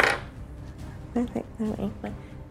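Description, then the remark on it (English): A short, bright clatter of dice hitting a hard surface at the very start, followed by quieter background voices talking over a dull room murmur. “You can roll it for stats.”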